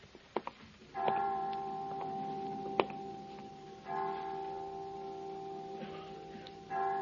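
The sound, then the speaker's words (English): A clock chime at a children's home strikes five o'clock slowly, resonant bell-like tones about three seconds apart, each ringing on and overlapping the next, with a few sharp ticking clicks between them. No one speaks. “Well, 5 o'clock. I didn't know the children's home had chimes.”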